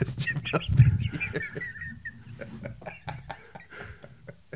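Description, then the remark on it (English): A voice imitates a chicken, producing a run of clucking and bawking sounds with a breathy, whispery quality and uneven rhythm over a few seconds. “A chicken in the stars.”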